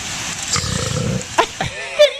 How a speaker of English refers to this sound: A turtle can burp? I had no idea.